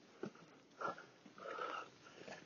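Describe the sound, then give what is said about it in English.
A dog, Wolfie, snuffles and sniffs on a walk in a few short, quiet bursts, with soft rustling movement between them and no one talking. “To be a normal dog, Wolfie.”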